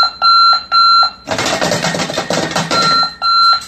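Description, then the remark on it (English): A very loud alarm clock with a bed-shaker device for placing under a child's pillow or mattress pad goes off: piercing electronic beeps in short bursts, then a harsh rattling ring, then the beeping pulses return. “Apparently, this is how loud the alarm clock is.”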